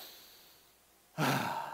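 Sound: deep breathing exercise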